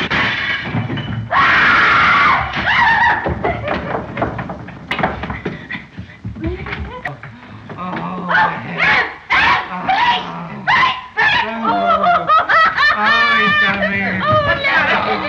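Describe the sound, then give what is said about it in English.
A woman in a film screams hysterically again and again in loud, shrill bursts cut together as a montage, with brief snatches of voices and commotion between the outbursts. “I always find it hilarious when Una O'Connor screams, here's a montage of her being hysterical”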